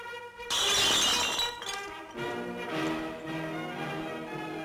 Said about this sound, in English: The sequence in this opulent room with opulent food prepared for a big dinner party, and they start tasting bits and pieces of the food, and suddenly when one of the protagonists breaks a glass on the table, everything changes.